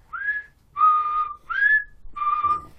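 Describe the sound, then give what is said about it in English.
A man whistles four clear, wavering notes in a steady call-and-answer pattern, alternating rising and flat tones, moderately loud with no talking. “And all of a sudden, there's like just this person whistling.”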